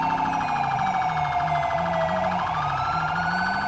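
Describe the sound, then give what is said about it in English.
The siren of a stolen ambulance wails loudly and continuously during a police pursuit, its pitch sweeping slowly down then rising again, with a steady engine drone underneath and no voices, as it travels about 100 miles an hour in Los Santos. “707, I have a 1080 on a stolen ambulance. He's going about 100 miles an hour in Los Santos.”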